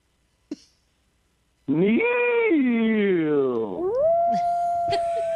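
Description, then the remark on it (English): After a brief click and a pause, a man lets out a loud, sustained howl imitating a wolf, howling a name as a quiz answer for National Wolf Month; the pitch wavers and slides down before rising into a steady, strained tone. “That's his interpretation of a wolf.”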